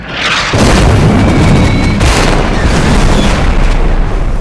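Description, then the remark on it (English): A second volley of anti-aircraft shells bursts around a squad of Hellcat aircraft: a heavy volley of booming explosions, a dense low rumble layered with whizzing, crackling, sizzling debris and faint whistling streaks, sustained loud for several seconds. “A second volley follows with whizzing, crackling combustion.”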